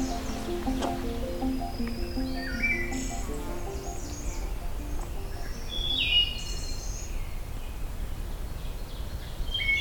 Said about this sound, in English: Distant oven bird.